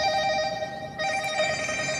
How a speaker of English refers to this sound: Hold on 1 second, people. Hold on 1 second. Let me turn this damn ring off. Let me let people get up in here first before I answer phone calls.